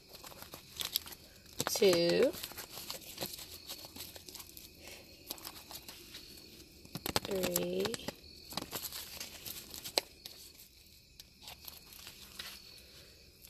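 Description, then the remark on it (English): Papery riffling and crinkling of a deck of cards being shuffled, in two main bursts a few seconds apart with softer handling clicks between them, and brief quiet vocal sounds. “I'm gonna shuffle this like 5 times.”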